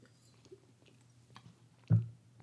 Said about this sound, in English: stop a second, take a sip of wine.